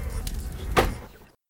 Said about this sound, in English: You pull the door handle with all of your might and it screeches open. You race into the hallway and slam the door behind you.